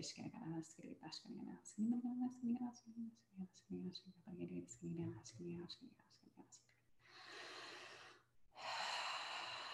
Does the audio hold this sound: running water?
no